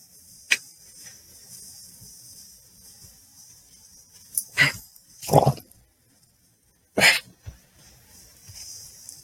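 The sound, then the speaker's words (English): A black dog makes a few short, sharp snorting bursts, irregularly spaced with quiet gaps between them. Nobody speaks. “Oh, he's a bat. He's a black dog.”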